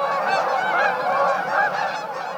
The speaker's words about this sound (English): The syncopated honks of Canada geese are among nature's definitive heralds of autumn migration. As V-shaped flocks of geese fly south, millions of Canada geese migrate each year.